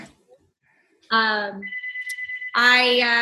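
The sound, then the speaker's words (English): A phone rings loudly, a bright electronic ringtone with a steady pulsing tone between fuller, richer bursts. “I can, you know, if I, sorry if you hear my phone ringing.”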